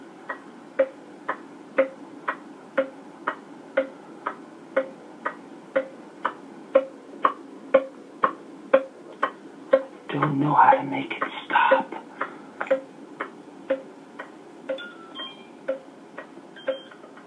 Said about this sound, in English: My landlord's refrigerator has a bomb, I think. It's a ticking clock. Can you hear it?